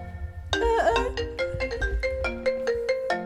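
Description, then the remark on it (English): A phone ringtone suddenly starts playing a bright, melodic electronic tune of quick repeated notes, fairly loud, with no one talking over it. “This guy with this phone. Like the last time.”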